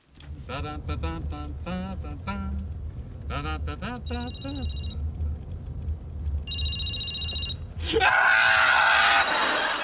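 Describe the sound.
Father Larry Duff's mobile phone rings in two short electronic bursts, following loud wailing, screaming voices, and a sudden harsh noisy burst cuts in at the end.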